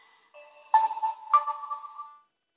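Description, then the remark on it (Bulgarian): A phone line rings out while calling someone, a short electronic ringback melody of a few bright tonal notes sounding in sequence, steady and fairly clear, with no voices present. “Дай да му звъннем, да видим, да не е нещо спешното.”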